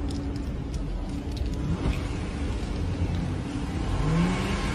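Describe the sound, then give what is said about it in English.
A car engine revs and accelerates over steady low road rumble, the pitch rising toward the end as the vehicle pulls away from the scene of a crash, with no one speaking. “No, he's all fucking nervous trying to flee the scene, and then, yeah, just smashing other cars.”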